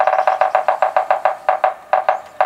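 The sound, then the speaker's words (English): Yellow-bellied sapsucker drumming: a quick burst of sharp woody taps that slows into irregular, spaced knocks, like Morse code, fairly loud with no voices. “Yellow-bellied sapsuckers have a particularly distinctive drumming sound that some compare to Morse code.”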